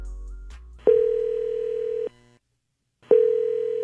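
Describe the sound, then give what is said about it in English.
A telephone ringback tone on an outgoing call to Sister Jean: two steady, loud electronic rings, each about a second long, separated by a brief silence, with no voices. “So I called her a bunch today.”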